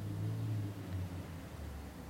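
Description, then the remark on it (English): A car rumbles past outside, a steady low engine drone with a soft hiss of road noise, with no one speaking. “And then, again, there's the concept, the recognition, the perception of what the sound is. Car.”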